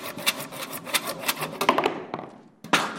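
A handsaw rasps through the wooden leg of a chair in quick, steady back-and-forth strokes, about a dozen of them, then briefly thins out before one last loud, gritty stroke. No one speaks.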